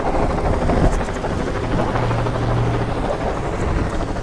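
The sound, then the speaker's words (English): A helicopter drones steadily overhead, slowly passing and circling around a bridge, its broad rotor rumble filling the scene at a fairly loud, constant level with no voices present. “Helicopter flying overhead.”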